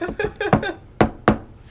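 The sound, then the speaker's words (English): Three sharp knocks on wood, fairly loud and dry, with the last two following each other quickly after a short pause. A brief murmur of voice comes just before the knocking. “I'm gonna knock on wood, and you're all gonna hear it.”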